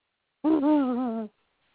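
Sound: dog whining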